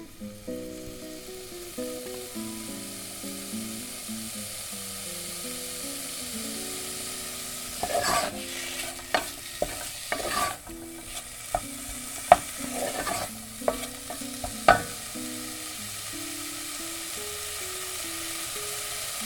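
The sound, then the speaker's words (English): Bacon sizzles in a saucepan with a steady, even hiss, broken midway by a run of sharp scraping clicks from stirring. A soft melodic tune plays underneath the whole time. “So bacon in the saucepan, and we're going to fry that off.”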